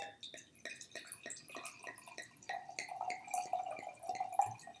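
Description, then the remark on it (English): A series of sharp clicks and knocks from opening a glass cognac bottle, then a steady pour of cognac with bubbling, gurgling tones that gradually rise in pitch as the glass fills. “Yeah, we're going to open the bottle, and then we'll see how it tastes.”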